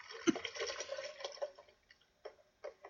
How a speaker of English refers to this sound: First, you pour in some milk. Milk.